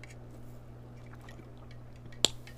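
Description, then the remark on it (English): A single quick sip, a brief wet slurp or click near the end, heard over a steady low electrical hum with no talking. “Let me take a sip.”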